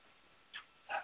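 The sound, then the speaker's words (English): A dog gives two short, high yelps about half a second apart, the second louder and fuller, against a quiet background with no one talking. “I couldn't see my dog for a minute.”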